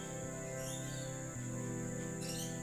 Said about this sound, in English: Like those birds that are chirping that just flew by.